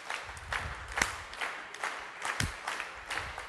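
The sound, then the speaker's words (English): An audience asked to clap along as crowd participation claps unevenly, the hand claps scattered and out of sync rather than in a steady beat, with occasional louder sharp claps standing out over a continuous patter. “No rhythm. You can stop now. Thank you for your crowd participation.”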